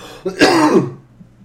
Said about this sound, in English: Bless you. Thank you, that was a very heavy sneeze.